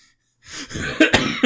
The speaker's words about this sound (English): Oh, I've got a weird cough now. That's how upset you made me.